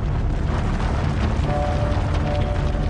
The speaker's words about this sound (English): An explosion tears a hole in a mine pit, and another, and near the dirt bed. A line of explosions rips through a ridge in the Appalachian Mountains.